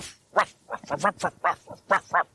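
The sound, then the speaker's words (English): A dog barks in a rapid, uneven series of about nine short, sharp yaps, each a brief harmonic burst, fairly loud and with no one talking over them. “Oh, that dog just will not shut up when he needs to shut up.”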